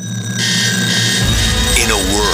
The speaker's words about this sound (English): Your alarm clock goes off too early.